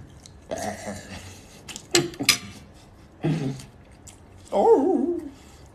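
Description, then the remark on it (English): A person's voice imitates a dog barking with a few short, gruff woofs, then finishes with a drawn-out, wavering cat-like meow. The imitations are fairly loud, with brief pauses between them. “Woof, woof. Meow. Meow.”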